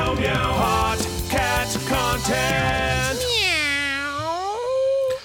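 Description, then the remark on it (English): A catchy jingle built from cat meows: a quick run of short, tuneful meow notes, then one long, drawn-out meow that dips and rises in pitch, loud. “Meow, meow! Hot cat content! Meow, meow! Hot cat content!”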